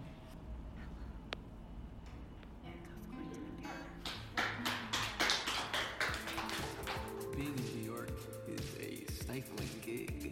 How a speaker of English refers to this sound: And then there's the soundtrack of the dishes being washed in the background with the interval of harsh noise dishwashing.